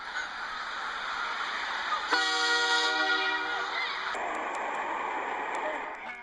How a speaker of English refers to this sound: It starts off all black, then smoke from some sort of engine is filling the air. Next, I hear the sound of a train.